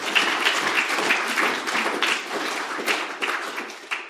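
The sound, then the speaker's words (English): A sustained round of applause from a crowd, dense overlapping claps holding steady at a fairly loud level for the full stretch, with no voices rising above it. “Okay, well, you've got the first round of applause today, but I think you should have the second, to be quite honest with you.”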